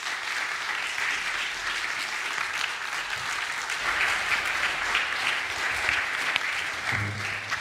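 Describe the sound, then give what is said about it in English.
Steady, sustained applause from an audience welcoming a guest, a former senior pastor of Paley Presbyterian Church, a dense crackle of many hands clapping at an even level for several seconds with no one speaking over it. “Let's welcome Jeff with our applause.”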